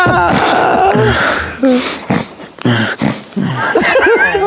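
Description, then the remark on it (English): A person imitates irregular, uneven sleep breathing: choppy gasps and sharp sniffing inhales at uneven intervals, mixed with voiced snorts and bits of laughter. “Also, that breathing pattern, if you actually are sleeping, is quite alarming.”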